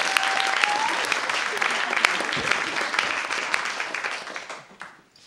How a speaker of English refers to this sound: thank you for your story, round of applause.